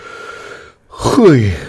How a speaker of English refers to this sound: Pardon for the yawns. It's, like I said, it's way too early.